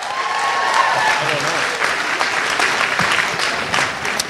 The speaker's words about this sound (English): Matt Lieb, ladies and gentlemen. Clap your hands for Matt Lieb.